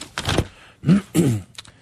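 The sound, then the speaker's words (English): Rustling of a pile of paper being shuffled while someone searches through it, in three short bursts of crinkling with brief pauses between, ending in a couple of light taps. “Where is it? I got my pile of paper.”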